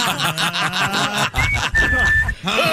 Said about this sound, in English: Do that whistle thing, man.